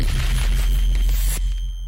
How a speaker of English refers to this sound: The impact is really the sound of like that kick causing compression on the vinyl noise, but the tail of it is the decay of the Foley with reverb. And then it's all sitting on that pad of bass.